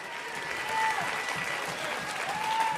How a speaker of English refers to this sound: Come on, if you receive it, take 30 more seconds. Clap your hands, all ye people. Shout unto God.